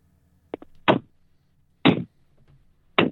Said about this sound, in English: I couldn't hardly hear it. It was wimpy. Little tiny slaps.